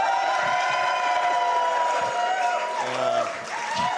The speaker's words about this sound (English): If it's going to be Team New Zealand and Aoife and James, can I get a big cheer now?